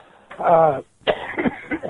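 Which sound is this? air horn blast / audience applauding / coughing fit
coughing fit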